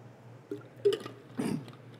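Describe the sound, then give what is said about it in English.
A preacher drinks water during a sermon, with a few soft, wet gulps and swallows spaced out over a couple of seconds. The sounds are quiet against a low steady hum, with no talking. “I need to get a drink of water, which I have to walk back here.”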